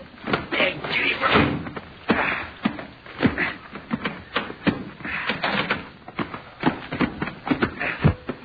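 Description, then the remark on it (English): A door is worked open amid a run of irregular clunks, rattles and shuffling movements, with loud knocks and scrapes scattered throughout. “Now, let me out and I'll open the door.”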